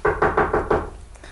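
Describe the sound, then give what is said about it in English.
Five firm knocks on a door in quick, even succession, fairly loud, then a brief quiet tail with no voices. “I knocked, I rung, you know.”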